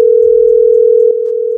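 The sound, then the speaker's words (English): A steady, unbroken telephone tone from an incoming call hums at a single mid pitch for the whole stretch, loud and constant, with a brief click partway through and no voices. “Yeah, hold on, We got one more. They tried to call in.”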